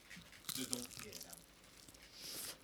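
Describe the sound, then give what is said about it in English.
A crisp bite into a chicken drumstick at the microphone, with a quick burst of crackly crunches followed by softer crinkling chews; a low voice murmurs faintly underneath. “I want to see if I could get the crunch on the microphone.”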